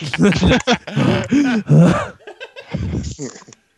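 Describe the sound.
A voice imitates heavy breathing left on a Skype voicemail, a series of loud, groaning huffs and gasps over a few seconds, ending with softer breathy exhales.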